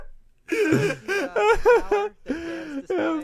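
Heavy, voiced panting after a round of a boxing bout: a run of rapid, strained breaths with a raspy, moaning edge, five or six loud gasps coming in quick succession with brief pauses between them.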